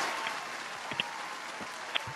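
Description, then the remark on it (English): A steady wash of applause from many hands clapping densely, with a few sharper individual claps popping out now and then; no one speaks. “Round of applause.”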